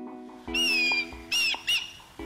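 Three loud, harsh bird calls ring out in quick succession, a longer squawk followed by two shorter bursts, over a steady low droning background.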